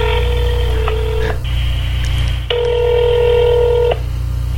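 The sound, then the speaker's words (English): Telephone keypad tones as the real phone number used in the film The Room is dialed: two long, steady electronic beeps, each lasting over a second, separated by a short gap and sounding over a constant low hum. No one speaks. “Maybe call it and he'll do an intro for the show.”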